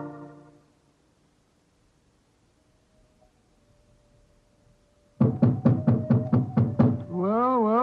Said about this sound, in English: This was the Elephant House. Why in thunder doesn't the keeper open the door? I imagine because his mind is preoccupied with music. Knock again, old fellow, will you?